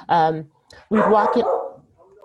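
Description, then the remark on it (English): A dog barks twice, a short loud bark followed after a brief pause by a longer, drawn-out one that trails off into quiet. “Sorry, the dog is barking.”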